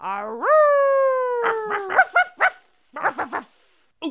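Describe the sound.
A person imitates a dog: a long rising, howl-like whine followed by a quick run of short, punchy woof barks, fairly loud with brief pauses between.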